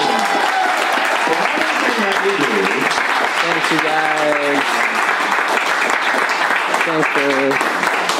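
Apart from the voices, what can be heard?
audience applause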